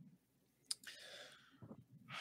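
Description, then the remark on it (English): Dice are rolled across a hard surface in a game, coming up eight: a sharp click, then a brief rattling tumble that settles, followed by another soft clatter. Quiet, with no one talking. “Justin Hammer rolling the dice.”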